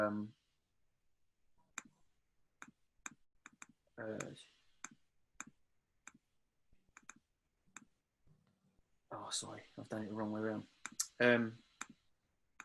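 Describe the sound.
Sharp keystroke clicks from typing on a computer keyboard while working out a calculation tap out in irregular bursts, continuing between and beneath short stretches of a person talking.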